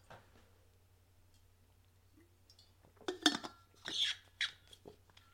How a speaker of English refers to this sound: Actually, let me take a pre-sip of water.